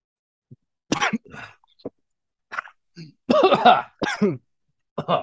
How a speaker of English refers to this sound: So I'm not choking because of the Malort. No, it's starting going down my windpipe.